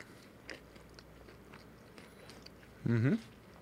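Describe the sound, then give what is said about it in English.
Quiet, muffled chewing of chicken fingers with a soft crunch near the start, then a short, loud hummed "mmm" of enjoyment near the end. “Took a nice juicy bite for TV, so you can guys just watch me eat this right now.”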